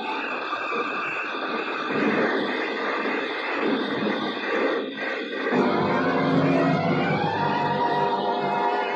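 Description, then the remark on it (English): A convertible car roars and skids sideways on gravel toward a cliff with a harsh, grinding rush of tires, the engine note rising into a steady strained hum midway, loud, with no talking. “The car skidded on gravel and slid sideways toward the cliff.”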